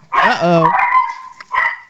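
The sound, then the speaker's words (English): A dog barks at someone at the door, loud and insistent: a long, drawn-out yelping bark followed by a shorter second bark after a brief pause. “Does that mean somebody's at your door? Yes, exactly right. We have the same thing.”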